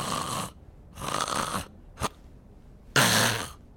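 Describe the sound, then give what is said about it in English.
A voice imitates loud, rasping snoring: three long, harsh snorts and a short sharp one in between, repeated in a steady breathing rhythm, unaccompanied. “I mean, snoring is just so off-putting.”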